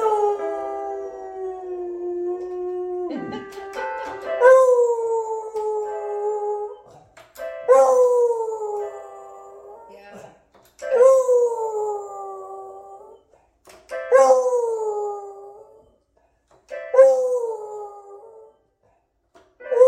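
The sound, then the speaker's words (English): A dog named Buddy howls with his head going back, in a series of long, wavering cries, each rising then sliding down in pitch, separated by short pauses, with a few yips and a quick snort near the start. “Expression when the head goes back. I know, it's beautiful.”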